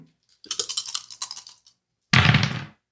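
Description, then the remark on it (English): Dice, a d6 and a d20, clatter across a hard surface in a quick run of sharp, rattling clicks, followed after a short pause by a louder, denser burst of tumbling rattle. No voices. “Oh, 2 threes on a d6 and then a 3 on a d20.”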